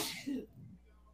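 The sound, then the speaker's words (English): A single sharp sneeze, a quick hissing burst with a short voiced catch at the end, followed by a brief quiet tail. “Bless you”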